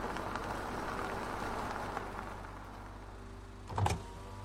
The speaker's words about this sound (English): But before we finished eating, a cop car pulled up. Oh, man, here we go.